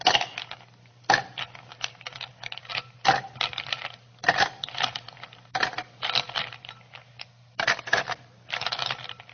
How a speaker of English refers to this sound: Okay, dump the ice cubes in here. Okay. Whoops. Okay, now I would like you to fill that glass with ice cubes. Okay.